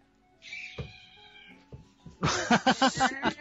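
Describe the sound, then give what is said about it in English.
A cat meows: first a thin, drawn-out cry, then a louder run of rapid, strained yowls in quick succession. “Meow. Hey, you troublemaker. Come here.”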